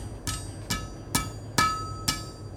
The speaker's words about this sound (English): One balmy summer evening when I was 14, my parents came home to find me in front of a fire, bent over a hot piece of metal, beating it with a hammer.